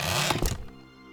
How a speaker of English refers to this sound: He removed the remnants of the broken lock from the latch, and without warning, the lid flew open with a horrible screech.